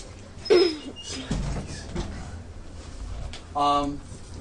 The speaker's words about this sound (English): Ah! Welcome. Let me gently close the door again.